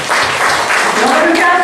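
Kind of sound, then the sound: crowd, audience applauding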